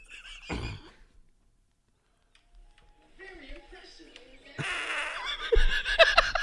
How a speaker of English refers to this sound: I get many of these farts.